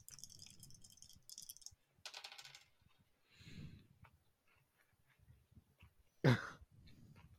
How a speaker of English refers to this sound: Rolling for damage. Wait, that's the wrong dice. Hold on.